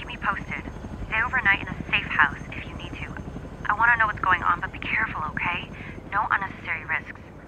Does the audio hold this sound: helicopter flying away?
yes